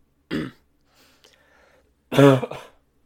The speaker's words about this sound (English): Sorry. As you can tell, I'm still trying to fight off a bit of a cough at the moment.